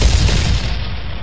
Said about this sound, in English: Touchdown, Tampa Bay. Fire the cannon. Bucs lead.